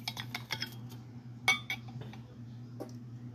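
A store-pick sample of Larceny whiskey (Heaven Hill) being poured into a glass: a quick cluster of light glassy clinks, then a sharper clink and a few scattered taps over a steady low hum, with no talking.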